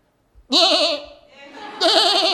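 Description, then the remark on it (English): A person imitates a goat's bleat from inside an apartment in Lahaina to call children indoors, two loud, quavering baa calls separated by a softer, wavering stretch in between. “And so all the kids were convinced we had a goat.”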